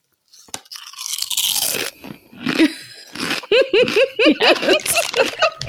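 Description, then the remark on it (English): A loud crunch of someone biting into potato chips, a dense burst of crackling lasting over a second, followed by another bite and then a stretch of giggling and snickering laughter. “Crunch it again. Okay, hold on. Hear it. They have the best crunch.”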